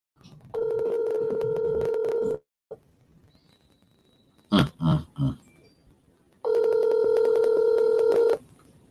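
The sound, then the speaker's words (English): Two long, steady electronic ringing tones from an unanswered outgoing phone call to Jacqueline, each about two seconds, separated by a pause with a few brief muffled sounds, fairly loud. “Now Jacqueline ain't answering the phone.”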